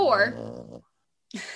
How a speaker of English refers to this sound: if you hear snorts, that's our dog, Gracie.